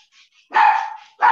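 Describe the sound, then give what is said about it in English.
A dog in a home barks twice, a loud, sustained bark followed by the start of another, with faint quiet sounds before it and no talking. “sorry, my dog's about to bark.”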